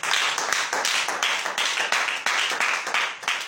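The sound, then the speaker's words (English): A crowd at a marriage seminar claps hands unto Jesus steadily and loudly, a dense, continuous wash of many overlapping claps filling the whole moment with no voices on top. “Clap unto Jesus.”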